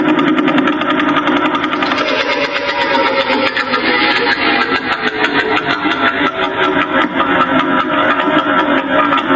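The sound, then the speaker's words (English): A slowed-down Vela Pulsar radio signal: a rapid, steady train of pulses blurring into a buzzing, engine-like drone that holds a constant loudness throughout, with no one talking. “And then we had the Vela Pulsar.”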